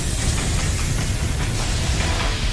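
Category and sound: sound effect, steam hissing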